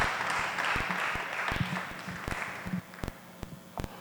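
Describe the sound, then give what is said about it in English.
An audience applauds, a dense wash of clapping that thins out over a few seconds into scattered, sharp individual claps. No voices stand out. “Oh, you didn't clap.”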